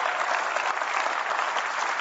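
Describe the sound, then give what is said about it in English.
An audience breaks into steady applause after a 26th wedding anniversary is announced, a dense, even wash of many hands clapping at once, sustained at full strength for the whole two seconds with no voices standing out. “And don't applaud.”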